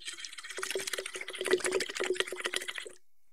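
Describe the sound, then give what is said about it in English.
Continuous bubbling as air is blown through a straw into a small bottle or tall glass half filled with water for about three seconds, with a steady low hum running underneath, then it stops abruptly. “Blow some bubbles into that water.”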